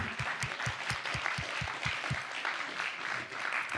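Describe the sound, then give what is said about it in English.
A church audience claps together on River Sunday to thank the worship team, in a dense, steady wash of applause lasting a few seconds. A regular low thumping beat runs under it for the first half, then fades while the clapping continues. “Yeah, we can clap.”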